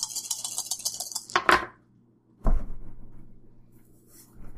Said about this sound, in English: And I forgot last time, but I'm in armor, so I lose a die. So instead of rolling 6 dice, I'm rolling 5 dice, and then I subtract 1, so I'm only rolling 4 dice for each.